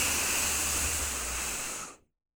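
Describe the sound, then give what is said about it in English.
A long, steady inhale, drawn in for as long as possible: a continuous breathy hiss of air for about two seconds, then stopping abruptly. No one speaks. “When I say go, I want you to inhale as long as you can.”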